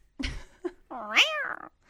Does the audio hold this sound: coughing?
no